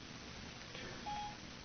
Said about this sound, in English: And Siri will come on, because I forgot that Siri's plugged into my phone and charging right now.